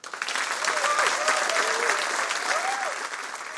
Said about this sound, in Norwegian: Tusen takk for at dere kom alle sammen. En stor applaus til kveldens gjest som befinner seg bak I hjørnet hvert øyeblikk med en stabel med bøker,